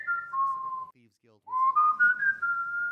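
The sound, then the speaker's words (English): A person whistles clearly: a sliding tone that dips, pauses briefly, then rises into a longer, wavering phrase with a bit of low background murmur. “gives a distinct whistle.”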